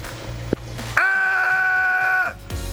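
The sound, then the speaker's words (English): A man in Canada lets out one loud, drawn-out yell at a swarm of caterpillars on his steps, held at a steady, strained pitch, with a brief knock just before it. “When you yell at caterpillars, listen to this guy.”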